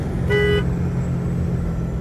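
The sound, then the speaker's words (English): A single short car horn blast sounds from about 0.3 to 0.6 seconds, honking at a big truck veering over into the other lane, rising clearly over a steady low rumble of road traffic and engine noise. “Big old truck veering over into the other lane.”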